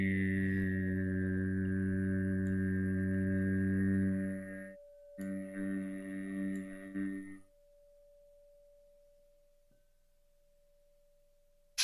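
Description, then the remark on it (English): A voice chants a long, steady "oo" (U) tone at a low, even pitch during a meditation warm-up, briefly breaks, then resumes before stopping, leaving a faint thin hum ringing on afterward. “Deep inhale and together the sound U.”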